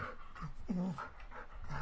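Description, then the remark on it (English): A dog pants in quick, breathy bursts, with a short whiny vocal tone mixed in, continuing steadily for a couple of seconds. “Is that your dog?”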